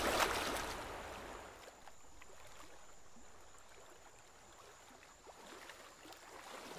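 Soft, steady rush of a flowing stream with faint scattered trickles and bubbling splashes, a little louder at the very start, then even and continuous, with no voices.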